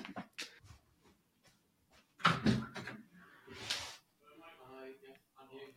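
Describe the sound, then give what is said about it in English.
A front door is unlatched and swung open for a DPD parcel delivery, with a couple of clattering knocks and a whoosh of movement, followed by muffled voices at the doorstep. “Someone at the door, because of course it's podcast time, which means delivery time.”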